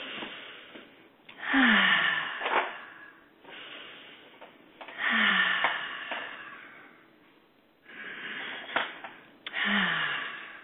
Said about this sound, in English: And activate that permission and self-love by breathing in three cleansing breaths.